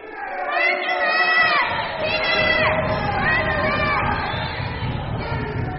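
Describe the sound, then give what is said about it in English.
A group of people scream and shout together loudly and continuously for several seconds, their overlapping high-pitched voices swelling and falling like an excited crowd. “No, scream it. Think American. Think, okay, just think you're in Wembley Stadium.”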